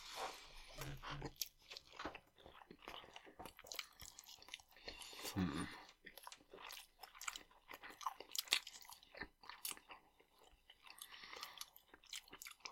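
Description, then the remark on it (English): Crisp chewing of a well-done, crispy pita, with repeated sharp crackling bites and munching in an uneven rhythm over several seconds, plus a few small mouth noises. “Extra crunch is all from me tonight.”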